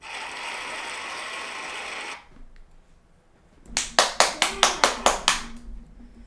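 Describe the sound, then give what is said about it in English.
A short burst of hand clapping, about eight sharp, evenly spaced claps, following a couple of seconds of steady hissing noise. No one speaks. “You already got an applause. You can't applause yourself.”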